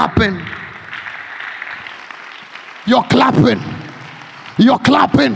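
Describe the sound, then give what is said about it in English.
An audience claps, a steady wash of many hands that fades to a low crowd murmur, then a man's loud preaching voice breaks in with two short bursts. “You're clapping.”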